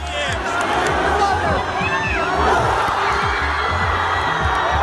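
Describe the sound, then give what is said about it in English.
Russian crowd cheering Russia's victory over Spain in the World Cup, a dense, continuous roar with scattered whoops and rising voices over a steady low rumble throughout. “Russians cheer an unlikely victory over Spain in the World Cup”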